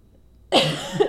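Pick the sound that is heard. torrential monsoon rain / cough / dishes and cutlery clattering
cough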